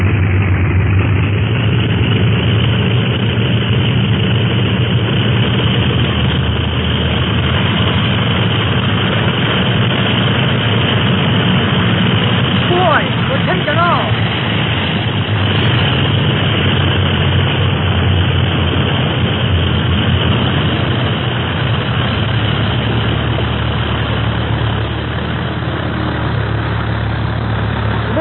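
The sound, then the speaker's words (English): A propeller plane's engine roars steadily and loudly throughout as Clint makes its takeoff, a dense low drone with a constant rumble that stays strong without pause, no voices heard. “Clint made a good takeoff.”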